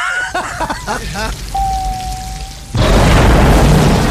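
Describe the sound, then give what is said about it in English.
Muffled voices give way to a single steady electronic beep lasting about a second, then an elevator explosion erupts into a loud, sustained roaring blast of noise and rumble that fills the rest. “The production designer, his favorite moment is that the elevator beeps before it explodes.”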